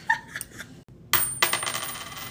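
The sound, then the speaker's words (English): A coin is flipped to make a heads-or-tails decision, with a faint metallic ping, then lands with a bright clatter and rings and rattles as it settles. No one speaks. “I feel like let's flip a coin.”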